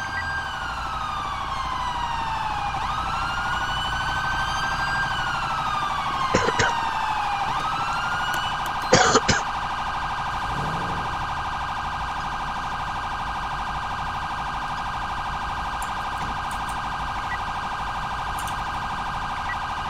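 A police siren wails loudly and steadily, its pitch sweeping slowly up and down over a constant electronic drone, with a couple of brief sharp knocks partway through.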